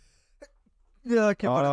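A loud, voiced sneeze: a rising, drawn-in 'ah' breath, a brief pause, then a forceful burst that is sharp at first and then tails off. No one speaks around it.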